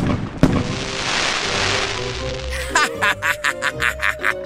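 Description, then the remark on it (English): A sharp firework boom gives way to a long, bright fizzling hiss, then a quick run of about eight rhythmic crackling bursts. No one speaks. “There will be powerful booms, fizzles and sparkles.”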